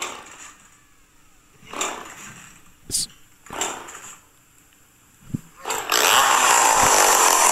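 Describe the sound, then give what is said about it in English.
A chainsaw is played as a musical instrument in a song, revving in short, rhythmic bursts, then breaking into a loud, sustained roar for the last couple of seconds. No one speaks. “He's playing a freaking chainsaw.”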